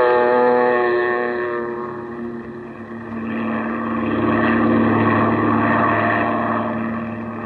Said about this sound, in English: Then you wade out to the plane, and a few minutes later, you're skimming across the bay, headed toward the Gulf.